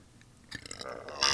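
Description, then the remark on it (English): A short, wet gurgling sound from the mouth or throat, rising in loudness over about a second and ending in a brief burst of breathy noise. “It wasn't even a burp, it was like a mouth gurgle.”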